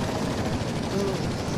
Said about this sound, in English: Why is this helicopter coming to me? No.